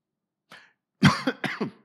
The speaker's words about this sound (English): That's how astonished I am that I'm coughing, right?